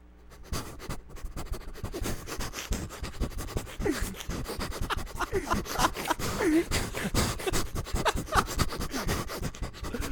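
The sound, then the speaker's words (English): A voice imitates an excited, friendly dog sniffing in someone's ear while being petted, with rapid, rhythmic snuffling and huffing bursts of breath, loud and near, continuing for several seconds. “And then the last one is when you're you know, when you're petting like a really excited dog and he's really excited and friendly. Yeah. And then he starts like sniffing in your ear.”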